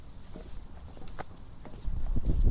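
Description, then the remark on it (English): Footsteps walking across a metal gantry with a floor of girders and big gaps, back towards the edge of the dish: a series of sharp, hollow clanking steps in an uneven rhythm over a low rumbling background that grows louder toward the end. No one speaks. “So now we're walking across the gantry back towards the edge of the dish.”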